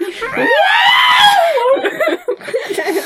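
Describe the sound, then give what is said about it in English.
A voice imitates the R2-D2 robot's shrill electronic scream, a rising-then-falling warbling squeal lasting about a second, loud, followed by brief chattering voices and laughter. “R2-D2 scream.”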